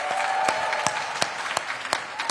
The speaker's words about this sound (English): I am most flabbergasted by is the fact that there was a round of applause after this first. After this first bit. Blah blah blah blah blah blah. There's no planet blah blah blah, and she gets a round of applause.